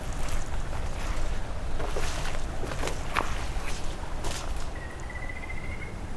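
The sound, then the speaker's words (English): Water rushes and gurgles steadily at a beaver dam, a dense, continuous wash of sound, with a few sharper splashes and a faint thin whistle near the end. “So maybe this water flow sound is from them damming up some areas here.”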